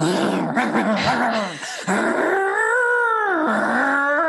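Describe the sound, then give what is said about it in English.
A voice imitates an engine revving: a loud, continuous growling hum that wavers, dips briefly, then surges upward in pitch and falls away again over about four seconds, with no other sounds. “Like revving the engines.”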